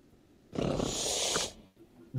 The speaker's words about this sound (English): Did you hear the hiss? Oh, yeah. I heard the hiss. That's definitely a cat.